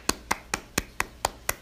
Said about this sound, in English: Awkward clapping. Who's ready for season 2?